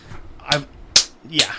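Three sharp, evenly spaced slapping smacks of bare feet slapping across concrete, fairly loud, seemingly a voice mimicking the slaps with breathy, mouthy bursts.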